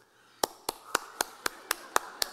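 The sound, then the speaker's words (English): Eight sharp hand claps in a quick, steady rhythm, each a crisp, bright smack of even loudness, with nothing else heard between them, illustrating the clapping Vanna White does on Wheel of Fortune. “Clap.”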